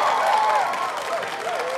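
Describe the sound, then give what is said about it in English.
A large arena crowd roars with sustained applause and cheering, a dense, loud wash of clapping and voices that stays steady from start to finish, greeting fighter Tommy Bronson as he emerges from the corner of the arena. “Tommy Bronson then emerged from the corner of the arena and was greeted with an overwhelming roar of applause from the audience.”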